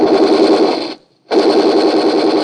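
Gunfire from a car at a man in the doorway of an apartment house: two long, loud bursts of rapid machine-gun fire, dense and rattling, separated by a brief pause of silence. No voices are heard.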